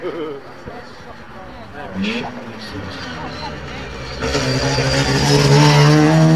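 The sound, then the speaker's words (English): A high-revving race car with a big-ported rotary engine buzzes with a harsh, raspy tone, swelling abruptly louder about two-thirds through as the car roars past at speed. “Another rotary.”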